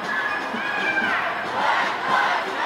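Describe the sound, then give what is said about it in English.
A man's loud, sustained yelling from a balcony outside rises over a dense wash of crowd shouting and cheering, continuing steadily for a few seconds with no clear break. “He's yelling right on the balcony.”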